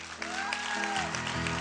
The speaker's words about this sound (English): Clap your hands like he's awesome.